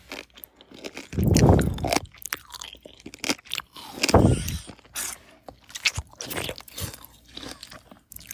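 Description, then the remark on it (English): Crunchy chewing and biting, with two louder bursts of munching standing out among many sharp, irregular crackles and clicks of food being bitten and chewed, and no talking. “In fact, we have a listener who wrote on Facebook that one of the things that bothers her is the sound of people eating.”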